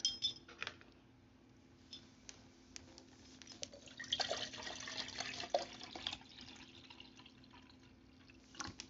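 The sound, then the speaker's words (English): A drink is poured swiftly into an emptied glass to refill it, a steady splashing trickle in the middle, bracketed by a few light glass clinks against a low background hum. No one speaks. “Since I just emptied my cup, let me fill it up. Did you hear how I poured?”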